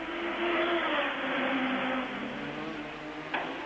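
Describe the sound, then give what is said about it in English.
Formula One racing car engines scream past in a continuous roar at the station hairpin, two Renault-engined cars chasing the BMW-powered Arrows of Bootson, their high whine sliding downward in pitch as they go by, with a brief sharp tick near the end and no voices. “Bootson, De Chaseris, Warwick, the two Renault engine-powered cars chasing the BMW-powered car, the arrows of Bootson.”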